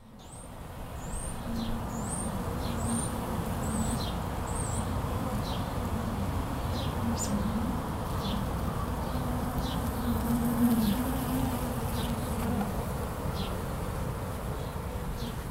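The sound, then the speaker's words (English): A dense, steady drone of many honeybees buzzing around their hives in the city of Pittsburgh, a continuous hum that swells slightly in places, with a few thin bird chirps overhead and no voices. “Now he has about 40 hives all over the city, with plans this year to put more in Spring Hill and the South Side.”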